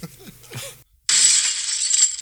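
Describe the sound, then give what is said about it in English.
Fireworks going off: after a muffled low rumble and a short silence, a loud, bright, hissing crackle bursts in and sizzles steadily for over a second. “Here goes the stupid fucking fireworks again.”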